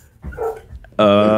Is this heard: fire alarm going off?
no